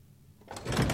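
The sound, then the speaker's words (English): A door-opening sound effect: after a brief quiet moment, a door opens with a swelling, rushing slide that grows loud, ending abruptly. No one speaks. “I was about to say, I like that you're changing up door sounds now.”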